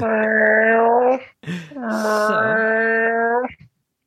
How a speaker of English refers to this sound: Holy shit, there's a cat fight about to go down in my hallway. Oh.